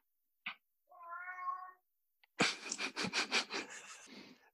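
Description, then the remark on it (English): A cat lets out a short, drawn-out meow, followed by a quick run of raspy, rhythmic bursts, like chattering or huffing. No one speaks. “He's a tease. Cats are weird.”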